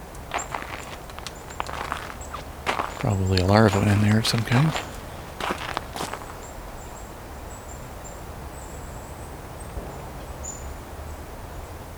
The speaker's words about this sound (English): No, it's a nuthatch making that sound. Trying to get a bug out of some tree bark.